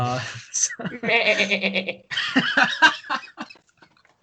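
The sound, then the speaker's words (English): People mimic sheep with a string of quavering, nasal bleats, fairly loud, one drawn-out wobbling call followed by several shorter ones overlapping in quick succession. “Join the sheep”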